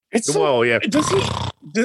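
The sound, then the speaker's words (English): A person imitates a snore: a low, rumbling voiced inhale that rises into a raspy, noisy breath, lasting over a second, followed by a short grunt. “Just snore.”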